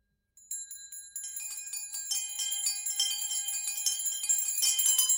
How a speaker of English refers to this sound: As he drew his head back in his chair, his glance happened to rest on a bell, a disused servant's bell. It was with astonishment and with inexplicable dread that as he looked, he saw this bell begin to swing.